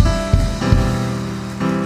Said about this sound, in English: Come on, somebody. Give the Lord a hand clap and praise. Come on.